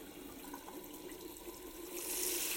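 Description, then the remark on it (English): Water runs steadily from a bathroom sink tap with a lift-up lever, a broad, hissing rush that swells louder and brighter in the final half-second as the flow increases. No one speaks. “The sink is the in a way that if you lift it up, it goes like this, and you can push the lever even more up.”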